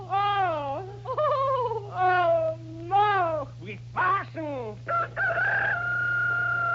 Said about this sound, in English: That was the rooster.